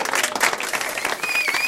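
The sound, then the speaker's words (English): A small group applauding as a guest is introduced, a dense, steady patter of claps with no pauses, fairly loud throughout, with a faint whistle-like tone sliding in near the end. “As the clapping stops.”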